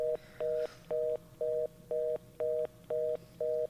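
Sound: telephone number being dialed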